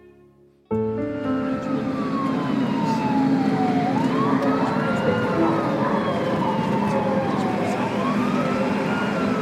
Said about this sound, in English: There were just so many ambulances, and just all through the night, the music didn't stop, but neither did the ambulances.